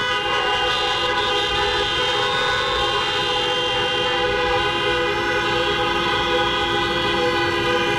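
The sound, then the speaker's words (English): Many car horns honk together as drivers answer a call for an amen, in one loud, sustained blare of overlapping tones that keeps going steadily for about eight seconds, with no voices. “And when I get ready in a minute, when I say, "Can I have an amen?" you honk your horn.”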